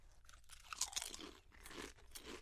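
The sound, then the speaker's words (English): Crisp, crackly crunching of Donair-sauce-flavored chips being chewed, a steady run of sharp bites and grinding with no talking over it. “I'm continuing to eat them just because I want my mind to be changed.”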